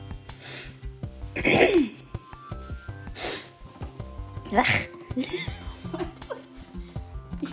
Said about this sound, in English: I was trying to get like mucus out of my throat. Sounds like I'm coughing up a hairball.